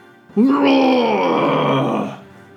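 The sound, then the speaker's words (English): A person voices a monster's roar: one loud, sustained, throaty growl lasting about two seconds, its pitch sagging slightly before it fades out. “And at that moment, the three of you hear a very familiar roar.”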